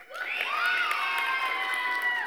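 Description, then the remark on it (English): An audience screams and cheers loudly, voting by applause for Home Alone as the best Christmas movie, high-pitched voices rising together in a sustained, excited roar that holds steady for a couple of seconds. “I heard that scream and vote.”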